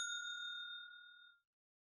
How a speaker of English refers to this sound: Got our spoiler bell. Spoiler bell. Yeah, spoiler bell.